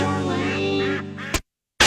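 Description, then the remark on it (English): A goose lets out one long, nasal, buzzing honk lasting just over a second, then cuts off into brief silence before a sudden loud burst at the very end. “And I'll feed you a delicious Christmas goose, which I done shot yesterday because its honking was interrupting my Judge Judy watching.”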